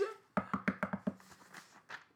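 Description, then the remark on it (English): Six quick knocks on a wooden surface in a steady rhythm, fairly loud, followed by a couple of softer, scattered taps. “See, I knocked on wood.”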